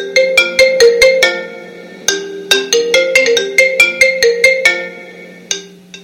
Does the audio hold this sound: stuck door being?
no